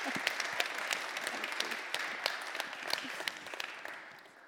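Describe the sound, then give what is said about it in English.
Steady crowd applause with dense, crackling claps, many hands at once, holding an even level for several seconds before easing off slightly at the end, with faint cheering mixed in. “We're going to cheer these guys.”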